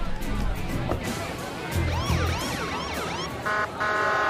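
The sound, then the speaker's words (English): A police car siren starts up partway through, giving several quick rising-and-falling yelps over a low rumbling background before cutting to a steadier tone at the end. “Let me out, then hit the siren.”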